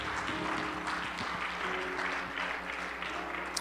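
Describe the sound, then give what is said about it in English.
A large group claps steadily and continuously as a hand clap of thanksgiving to the Lord, a dense, even wash of applause for several seconds without pause or spoken words. “Oh, come on, let's give the Lord a hand clap of thanksgiving today.”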